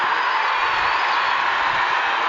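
A basketball crowd at the Marriott Center cheers after McKay Cannon's three-pointer pulls BYU within 12 of Houston at 65-53 with six minutes to go, a loud, steady roar of many voices blended into a dense wash of noise, with no single voice standing out and no one speaking over it.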